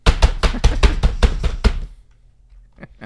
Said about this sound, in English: My keyboard's very loud.